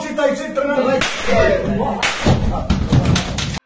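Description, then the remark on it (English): Several heavy, booming thumps of grenade explosions in a video being played go off in quick succession, about a second apart, each with a broad rumbling burst, under a continuous muffled wash of background noise. “yeah, let's go back to the fucking grenades.”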